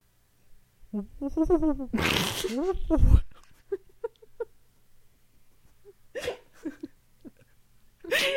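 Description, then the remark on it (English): A voice imitates an odd, electronic-sounding owl hoot: a wavering, warbling tone that breaks into a loud, raspy burst, followed by short clicks and two more harsh bursts. “Did you hear something? No, I don't think I heard anything. Like a strangely electronic owl.”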